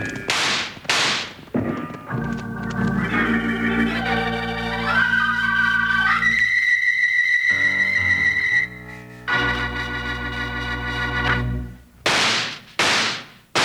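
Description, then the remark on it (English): Sharp, loud gunshot cracks burst out at the start, then dramatic orchestral music swells, and three quick shots ring out in a rapid series at the end. “Wranglers, those three gunshots are just to remind you that Kellogg's new cutout masks are in 3D.”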